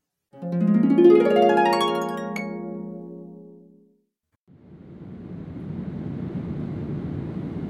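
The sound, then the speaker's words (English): A steady, muffled roar of airplane cabin engine noise on an Air France flight from Paris Charles de Gaulle to Berlin Tegel fills the second half, following a sustained tonal chime-like sound that fades out before a short pause. “This conversation takes place in a plane bound to Berlin.”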